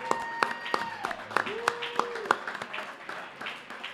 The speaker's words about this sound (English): If you guys could give a round of applause to my guy, number 15